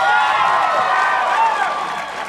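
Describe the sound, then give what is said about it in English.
A crowd applauds and cheers loudly, a dense steady wash of clapping and voices that eases off slightly toward the end. “Is it because you're waiting until we've both introduced ourselves and then applauding for us both?”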